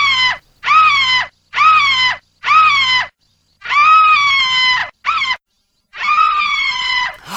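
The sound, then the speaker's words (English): A woman screams loudly in a rapid series of about seven shrill bursts, each breaking off into short silences before the next, with no talking. “But now it's time for this week's Woman Screaming.”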